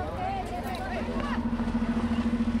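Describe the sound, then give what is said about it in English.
A large bus engine rumbles to life with a deep, steady drone that settles into a rhythmic throb as the bus starts for home from the South Central Farm in Los Angeles on Earth Day, while indistinct voices murmur in the background. “The bus starts for home.”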